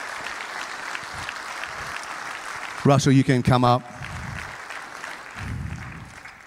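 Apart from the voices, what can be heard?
audience applause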